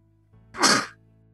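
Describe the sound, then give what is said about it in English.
A single sharp, loud sneeze, a short breathy explosion of noise that fades quickly, with a faint low hum underneath and no talking. “The sneeze led him away.”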